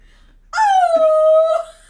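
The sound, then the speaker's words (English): A person imitates a wolf howl: one fairly loud, drawn-out "a-woo" that slides gently downward in pitch for over a second, with no other sounds around it. “They a-woo? That's a wolf.”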